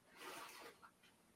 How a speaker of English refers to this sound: So you're going to be rolling two dice and keeping the sorry, it's distracting. Sorry, rolling two dice and keeping the lowest.